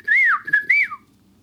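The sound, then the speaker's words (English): A person whistles a short imitation bird call: a rising and falling warble, a quick chirp, then another swooping note that trails off, all within about a second. “Yeah, not even like I just, right then, I just did a better bird call.”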